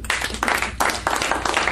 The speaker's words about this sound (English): Now, a big round of applause.